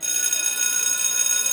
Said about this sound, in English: A bell rang through the foyer.